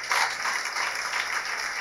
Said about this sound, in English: Clap for them. Put your hands together for the facilitators. They are doing very well for us. Oh, clap for them. Clap for them well.